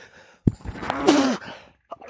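sneeze

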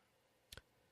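computer mouse clicking

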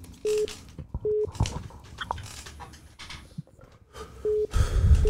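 phone call hung up

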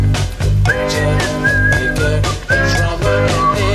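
whistle

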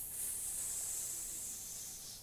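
sizzling hiss sound effect

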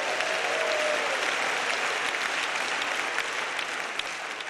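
audience clapping hands

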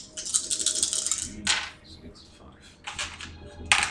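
dice being rolled

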